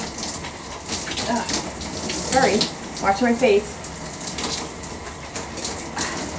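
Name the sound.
shower water running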